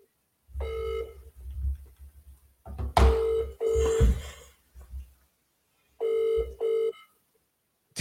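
An outgoing phone call to a boxer's trainer rings, its ringback tone purring several times, each ring a steady electronic buzz separated by short pauses, with a few soft thumps and handling noises in between.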